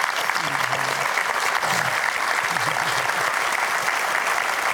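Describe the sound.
A large audience on the Life Today show applauds steadily for the life of Peter Pretorius, a dense wash of clapping that holds at full strength for several seconds, with a faint voice or two murmuring low underneath.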